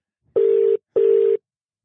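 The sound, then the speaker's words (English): Two steady electronic ringback tones sound in succession, each lasting about half a second with a short pause between, heard through a phone line as an outgoing call rings unanswered, with no voices. “I want him to watch this and know that he did not answer the phone.”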